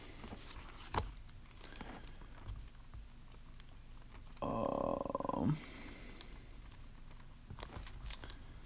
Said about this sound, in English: Pardon me. This is like belching there.